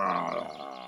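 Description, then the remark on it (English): A voice imitates a dinosaur roar, a single sustained, harmonic-rich growl just under a second long, starting loud and holding steady with a rough, throaty edge. “That's an indignant roar if I ever heard one.”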